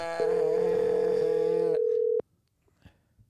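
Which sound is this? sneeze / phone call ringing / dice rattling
phone call ringing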